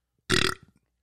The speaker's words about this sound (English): Sorry, burping.